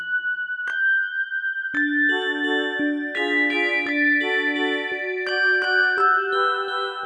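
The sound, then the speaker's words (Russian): Small bells tinkle in a bright melody, each struck note ringing out and overlapping the next in a steady, lilting pattern, with no voices. “Динь-динь-динь, динь-динь-динь”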